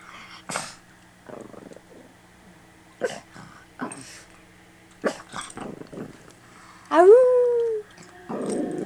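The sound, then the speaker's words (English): A female dog lets out one short, loud howl, its pitch rising and then sliding down, preceded by scattered soft snuffles and small noises. “My dog is gonna say hi now. Lena, can you howl?”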